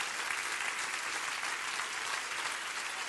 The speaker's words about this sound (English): Isn't this beautiful? Come on, isn't this beautiful? Come on, clap your hands.